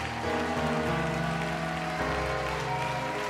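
A church audience claps steadily, a dense patter of many hands, beneath sustained organ-like music with held low chords that shift partway through.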